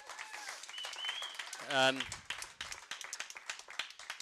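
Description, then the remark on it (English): A crowd claps steadily for a church worship team, the sharp irregular claps running through the whole stretch, with a brief loud voiced cheer partway in and some voices mixed in underneath. “Can we give the worship team a round of applause, please?”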